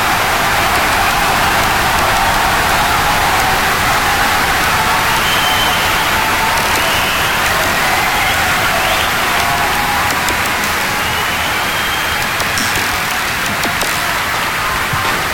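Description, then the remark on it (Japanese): A large audience applauds warmly for this year's first-place winner, Atsuko Maeda, a dense, steady wash of clapping that stays loud and even for the whole stretch, with no voices breaking through. “改めて今年度の第1位前田敦子に熱い拍手を送りいただきたいと思います。”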